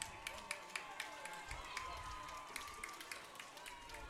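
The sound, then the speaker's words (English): Football fans in the stands cheer steadily as Almont beats Cros-Lex, a standing ovation for the Raiders: a continuous roar of many voices with scattered sharp claps and whoops popping out irregularly across the whole four seconds. “As you hear the fans in front of it, take it home.”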